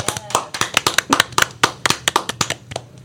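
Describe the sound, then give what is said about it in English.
A round of applause from a group for the San Mateo Foster City Education Foundation: quick, irregular, sharp claps overlapping at a steady loud level for about three seconds, with a few voices mixed in underneath. “Give me a round of applause for that, you guys.”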